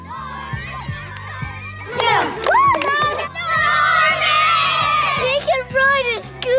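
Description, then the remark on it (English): A group of neighborhood children cheer and shout excitedly outdoors as Norman, a dog, presents a trick for them, their high voices overlapping in loud bursts, with a steady background beat running underneath. “He's now ready to present his biggest trick yet to the local kids.”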